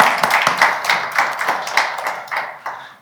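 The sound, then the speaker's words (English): A crowd claps in a steady patter of overlapping sharp hand claps, fairly loud at first and gradually thinning and fading out over about three seconds, with no talking. “Yeah, you can clap.”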